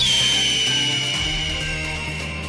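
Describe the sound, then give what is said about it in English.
A loud, drawn-out eagle screech sound effect, shrill and piercing, holds steady for a couple of seconds and sags slightly in pitch as it fades, with a low rumble underneath and no talking. “like an eagle rises into the skies of America. Let freedom screech.”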